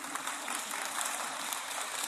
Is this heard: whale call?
no